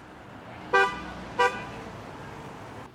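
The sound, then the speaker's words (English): Two short car horn honks, each a bright harmonic toot about half a second apart, given in support of demonstrators holding signs against a proposed redevelopment of the Shoppers Mall site on 120th Street near 80th Avenue in Delta, over a steady low hum of street traffic. “Demonstrators getting honks of support as they held signs speaking up against plans for the Shoppers Mall site on 120th Street near 80th Avenue.”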